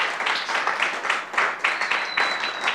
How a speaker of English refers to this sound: Clap your hands in this place if you're excited about that.